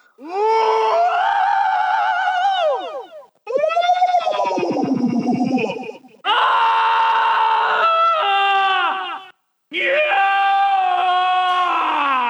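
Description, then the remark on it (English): Four loud, raw human screams by two sound designers, recorded for a Star Wars dragon creature sound and included in the Sounds of Star Wars book, harsh, each held for a few seconds with strained, wavering pitch and brief gaps between them, with no other sounds around them. “And what's amazing too is that in the Sounds of Star Wars book, there is just the raw … and … screams, just in case you need to hear that.”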